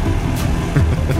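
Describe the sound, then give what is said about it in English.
A voice imitates a push lawnmower mowing tall grass, with a loud, steady, low rumbling drone whose pitch wobbles slightly midway, continuous for about a second with no other talk. “And so, Sun King flies up above the tall grass, only to see that Mark is using a push mower to mow the very grass that he and his fellow American Super Society members are standing in.”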